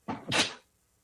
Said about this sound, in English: I am a little bit about to sneeze.